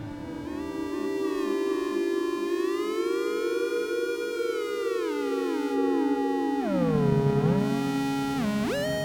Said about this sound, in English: I heard somebody refer to this one as a drone synth. Is that what it is? Yeah, the DS2 drone synth. Again, it's a portable drone synth. It's battery operated. It's got speakers. You can take it anywhere. It sounds great.